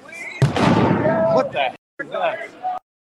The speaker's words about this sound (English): So that loud bang that you heard is the police officers. That's their warning bang.